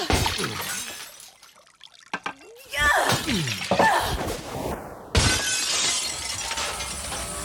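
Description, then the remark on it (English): Loud glass shattering in several sharp bursts as a jar of whiskey and a glass are thrown, each crash followed by scattering shards and clatter, with faint voices and a splash of liquid mixed in. “Threw a cigarette at him, threw a pillow at him, threw flowers, threw a jar of whiskey, I think, then threw a glass.”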